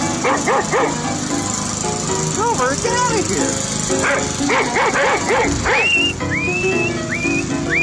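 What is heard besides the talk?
dog barking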